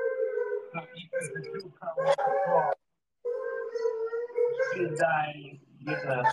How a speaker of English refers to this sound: As the dogs are howling again. Oh my God, bro. These dogs are going crazy.